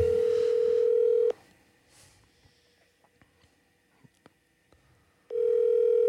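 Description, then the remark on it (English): A phone ringback tone sounds twice, each a loud steady electronic burst of over a second, separated by about four seconds of quiet line noise with faint clicks. “See if he answers. The pod full of phone calls today. He might not answer.”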